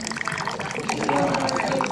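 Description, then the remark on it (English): The first round of coffee, after 45 minutes of brewing, pours steadily into a small cup, a continuous splashing trickle whose pitch rises as the cup fills, with faint background voices. “After 45 minutes, the first round of coffee was poured into little cups.”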